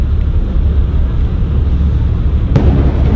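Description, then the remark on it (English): A deep, rumbling outdoor blast from a water bomb set off by technicians to saturate a circuit board inside the former apartment of James Holmes: heavy low-frequency roar fills the whole stretch, with a sharp crack breaking through near the end. No voices are heard. “And that explosion there was actually a water bomb that technicians used to saturate what was basically a circuit board inside the former apartment of James Holmes”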